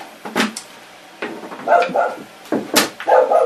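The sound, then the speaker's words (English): A big dog barks several times in uneven bursts, loud, with short pauses between the deep, rough woofs and no voices. “Did you see the giant dog?”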